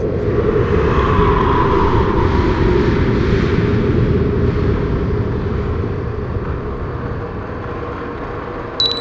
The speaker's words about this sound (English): Exhaust gears and heating fans.